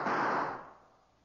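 A heavy, rumbling crash as barrels are pushed over and topple, a dense burst of noise that rolls on for about a second before fading out, with no voices.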